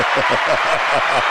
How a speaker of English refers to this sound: Yeah. And the crowd goes wild.